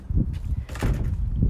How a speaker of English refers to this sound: Oh, and the door's about to slam.